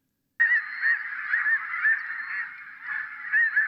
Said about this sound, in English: That wasn't any goose. That was the Wiley snow goose.